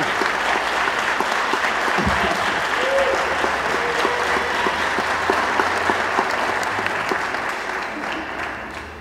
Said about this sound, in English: Man, just clap for that, please.